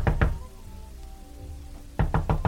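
Knocking on a door: two heavy knocks, a pause with a faint low hum, then a quicker burst of four firm, dull raps. No voices.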